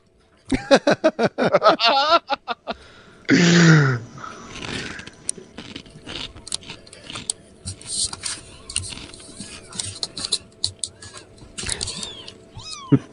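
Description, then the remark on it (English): Kittens meow in a burst of high, rapid cries, followed by one louder drawn-out mew, then quieter scattered clicks and rustling noises fill the rest. “See the kittens, y'all?”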